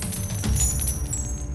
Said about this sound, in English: The griffin's tail swung around to brush against Hans's pockets. A few gold coins fell out and clattered to the ground.